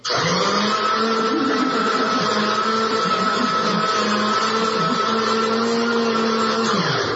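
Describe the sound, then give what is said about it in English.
A loud Black and Decker coffee machine grinds and whirs without pause for about seven seconds, a steady motor drone with a low hum that wavers slightly in pitch before cutting off at the end. “Are you making coffee with power tools?”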